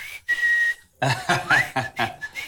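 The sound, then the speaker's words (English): A person whistles a short, steady high note, then after a pause lets out a quick upward-sliding whistle amid breathy, puffing bursts, fairly loud. “And your wife's like, are you whistling at me? I'm not whistling at all.”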